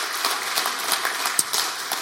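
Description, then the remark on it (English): An audience applauds its pastors steadily, many hands clapping in a dense, continuous patter with a few sharper claps standing out, sustained at a fairly even level throughout. “So can we give a round of applause to our pastors?”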